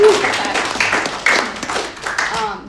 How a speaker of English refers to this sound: So he's so faithful. We got to give him a clap.